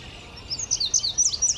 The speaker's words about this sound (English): Up above us, there's an indigo bunting singing up in the maple right there.